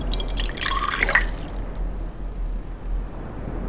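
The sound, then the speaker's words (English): A short splash of a mixture of two parts saline and one part water being poured in a first experimental trial, lasting about a second, with bright trickling tones, then fading into a quiet low hum with no talking. “It was two parts saline, one part water.”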